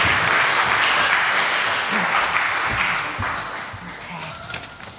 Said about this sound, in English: I think they deserve a round of applause for their lovely colouring.